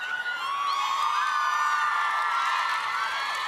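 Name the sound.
crowd cheering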